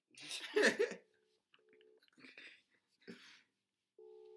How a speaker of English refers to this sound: I'm gonna have to WhatsApp call her, but I hope she answers her phone.